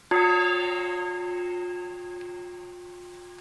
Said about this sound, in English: Thank you for continuing to nurture an open heart as I sound our gong. Move into our 30 seconds of silence.